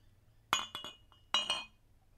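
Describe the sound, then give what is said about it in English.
Glass clinking as a drink is poured: a few bright, ringing chinks in two quick clusters, sharp and high-pitched, with no talking underneath. “I just need to have a little sip. Oh, I'm going to pour some more.”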